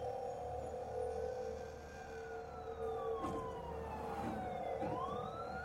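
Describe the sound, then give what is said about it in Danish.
Wailing ambulance and police sirens rise and fall over steady traffic rumble, overlapping tones sweeping continuously, loud, with no one speaking; police and ambulances arriving at Rødovre S-train station in Denmark after a stabbing. “Kniven sad der stadig, da politi og hylende ambulancer ankom 5 minutter efter.”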